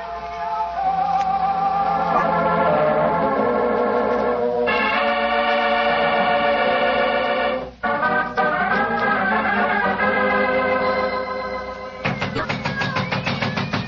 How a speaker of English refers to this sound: Doesn't she answer? Shh. Listen. There are cats inside our dressing room.